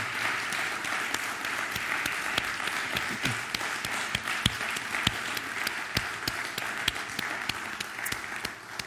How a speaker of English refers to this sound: Can we clap our hands one more time for Jesus? Hallelujah.